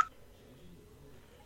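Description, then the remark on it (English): A short electronic phone tone chirps at the start, then quiet low background, and a second brief beep sounds at the very end as a landline call is hung up with a two-finger double tap on a smartwatch. “And there we go. Hang up my landline.”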